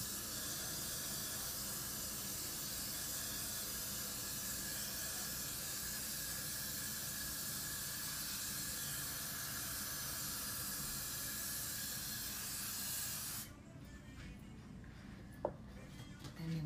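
A spray bottle hisses in one long, steady burst as a wig cap is sprayed, loud and continuous for about thirteen seconds before cutting off to quiet room noise.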